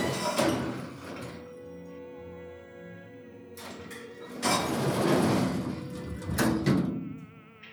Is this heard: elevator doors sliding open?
yes